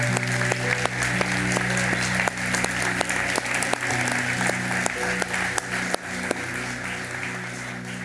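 An audience applauds steadily for the Lord, dense clapping over a sustained organ-like drone, with a few sharper claps standing out before the applause eases slightly toward the end.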